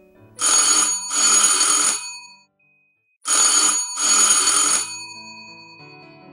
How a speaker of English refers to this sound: And how about a doorbell? Do you have a doorbell at your home? How does it sound? Does it say ting tong? Or does it have more music in it? Like this?